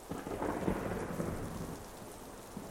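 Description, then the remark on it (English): A low, distant roll of thunder rumbles beneath a steady hiss of falling rain, swelling early and then easing into a softer, continuous wash. No voices. “soon Gunhild felt raindrops on her face. Thunder rolled in the distance.”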